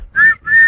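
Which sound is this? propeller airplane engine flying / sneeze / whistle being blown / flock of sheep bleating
whistle being blown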